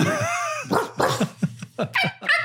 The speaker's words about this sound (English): And there's barking going on there. There's a whole bunch of like... Yeah.